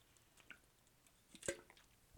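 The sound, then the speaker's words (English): Someone takes a quiet sip of a drink, with soft wet slurping and mouth sounds and one sharper gulp-like click near the end, no talking. “But I will say, I do have my drink and I will have to take some sip breaks now and then.”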